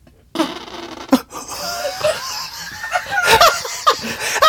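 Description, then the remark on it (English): Ducks quacking in a rapid, irregular series of harsh, nasal calls, fairly loud, several birds overlapping in bursts with no one talking. “Oh, the ducks, man.”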